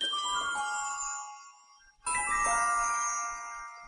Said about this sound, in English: So that jingly noise that you hear whenever I play a flashback clip comes from Back to the Future. So I thought it was an appropriate clip to kind of signify the beginning and end of a historical documented thing. So that's why I use it.